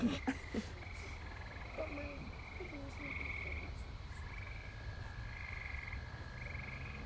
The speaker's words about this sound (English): I just heard something. Amelia, shut up. It was a frog. Ribbit.